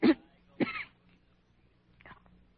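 A sick woman, a patient being seen by a doctor, coughs twice in quick succession, fairly loud, followed by a fainter, shorter cough a moment later against a quiet background hum.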